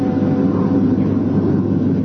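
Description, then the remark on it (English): Steady, heavy airplane engine drone heard from inside the cabin of an ambulance plane carrying wounded soldiers between the front line and base hospitals, a continuous low rumble with a muffled roar that holds even and loud throughout, with no voices. “Never been up in a plane before.”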